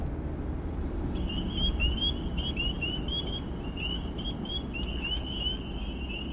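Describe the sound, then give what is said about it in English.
A chorus of spring peeper frogs gives rapid, overlapping high-pitched upslurred peeps that start after a second and continue steadily over a constant low rumbling background, with a wood frog also calling in the background. “Peepers are heard here with a wood frog in the background.”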